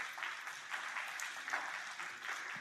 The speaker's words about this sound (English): Let's give them a big hand, clap of praise, first of all.